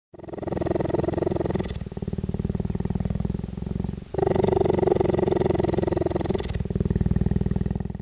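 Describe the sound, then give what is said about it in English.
A cheetah purring: a loud, continuous, rumbling purr with a steady fluttering pulse that shifts in tone as the animal breathes in and out across several cycles, with no talking. “That's definitely purr. Oh, that's a purr.”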